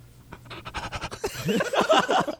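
Raspy, breathy panting in quick rhythmic bursts, growing louder toward the end, with a harsh, scratchy edge to each breath and no clear words.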